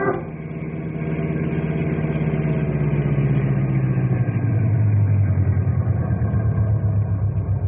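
A car engine idles with a steady low rumble that holds throughout, its pitch dipping slightly and the throb thickening partway through, with no voices present.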